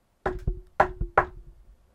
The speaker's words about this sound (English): Right when I was heading towards the purple route, I heard three knocks in the distance.